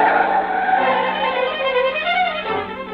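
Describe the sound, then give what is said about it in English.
A car peels away with its tires squealing, a loud, continuous screech layered over the engine's roar that holds steady for about three seconds before easing slightly at the end. “You keep saying things you shouldn't, and she lashes out with an answer, and before you know it, you've stormed out of the house, and you're taking it out on the car.”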